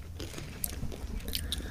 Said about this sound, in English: What are you thinking as you munch on that one? There's barely any flavour on it.